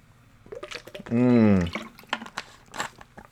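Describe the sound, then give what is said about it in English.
Someone takes a drink of water, with small wet sips and swallowing clicks around a loud, drawn-out vocal sigh of relief partway through. “Let me take a quick drink of water.”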